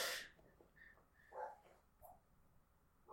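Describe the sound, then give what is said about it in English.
A few short, faint dog barks and yips sound, spaced irregularly over a few seconds, with a brief noisy burst at the start and no one talking. “Oh, are you ready for the dogs barking?”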